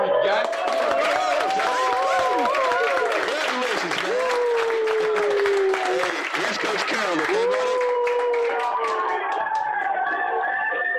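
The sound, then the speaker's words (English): A small crowd cheers and claps loudly as a player gets a draft phone call from the Seattle Seahawks picking him at 158, with overlapping whoops and shouts over steady, dense applause that carries on as the voices begin to fade toward the end. “Wow, you got a little crowd going on there.”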